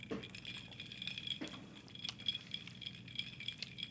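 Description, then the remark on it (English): Glasses clink and rattle softly in an irregular series of bright, ringing taps as drinks are tasted, like ice shifting in a drink, with no one talking over it. “And I mean, when I say better than it sounds, it sounds like a drink being mixed, and it tastes even better than a drink being mixed.”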